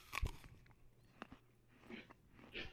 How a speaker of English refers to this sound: I mean, is that you munching? Is that you munching? I'm eating peanut butter crunch.